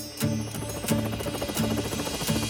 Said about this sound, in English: the helicopter was still searching the countryside. He swooped over the villages and flew over farms.